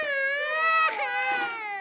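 An infant cries loudly at the Bright Horizons Child Care Development Center at the Energy Department, a sustained high-pitched wail with a brief catch and break partway through before the crying continues steadily to the end.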